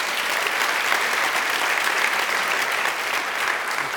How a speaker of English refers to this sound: By the way, a big round of applause.